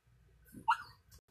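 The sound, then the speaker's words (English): A pug dog lets out one short, high, whiny bark, fairly loud, over a low background rumble, then goes quiet. “Last but not least, the message from my sweetie pug.”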